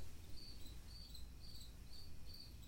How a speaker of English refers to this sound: And the beautiful thing about this space right now is the crickets singing along with me. It's just near the end of August.